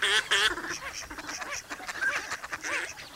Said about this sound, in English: As winter ends, 10 million waterfowl rest and feed here before continuing north.